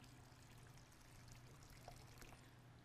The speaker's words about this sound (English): And I want you to come forward, and I want you to take this, one of these cups. You don't have to fill it all the way. There's not that much water in here. And I want you to pour into.